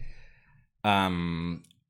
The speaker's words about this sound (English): The dog is snoring. The dog... The nature of time suggests that just because she is snoring now does not mean that she has always been snoring.